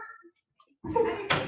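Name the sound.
door being closed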